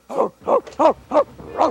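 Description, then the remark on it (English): A puppeteer voices the dog character Sprocket, who never speaks English, with five short, evenly spaced woofing yelps, each mid-pitched with a rise-and-fall bend, fairly loud and with no talking around them. “And Sprocket was from the beginning always meant to be basically a lot like a real dog, only he had to express himself.”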